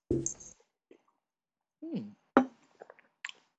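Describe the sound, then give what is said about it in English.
Mouth noises of drinking milk with a few single sugared cereal flakes: a wet slurp, a throaty gulp, then a sharp crunch followed by a few small moist clicks of chewing, with no talking. “Let me give it this little milk drink with the single flakes.”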